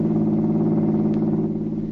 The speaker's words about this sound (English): However, instead of being taken into the country as she expected, the car turned into a fashionable business street.